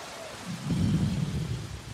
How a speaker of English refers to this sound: Add in the rain. Can you do like lightning and thunder?